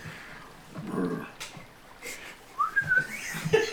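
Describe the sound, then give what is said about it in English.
A person imitates a chirp with a few short, high whistled tones that rise and dip in pitch, preceded by soft breathy mouth sounds, with no words spoken. “and he chirps”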